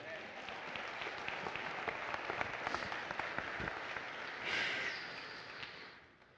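A church audience breaks into sustained applause, a hand clap for the Lord, a dense wash of many hands clapping at a steady loudness, swelling briefly near the end before fading out.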